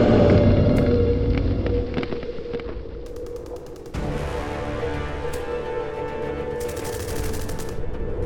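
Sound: rapid automatic gunfire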